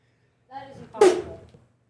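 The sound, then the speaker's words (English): A short voiced intake builds for half a second, then breaks into a single sharp, hissy burst as someone stifles a sneeze, fading quickly into quiet. “Just barely caught myself sneezing.”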